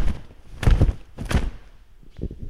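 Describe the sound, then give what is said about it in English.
A voice imitates the swish of Michael Jackson's clothes moving as he danced: two sharp, breathy whooshing bursts about half a second apart, fairly loud, followed by softer, fainter rustles. “the only person that I've ever danced beside who you could hear his clothes move in the room.”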